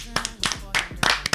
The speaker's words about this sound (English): It's time for another episode of Friday Night Whiskey. Clap it up.